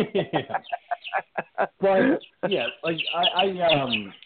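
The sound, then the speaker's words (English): A voice imitates chicken clucking: a run of short, choppy clucks, then longer warbling, squawky calls that rise and fall for several seconds. “it sounds like a Cadbury commercial over there, …. There's some chicken.”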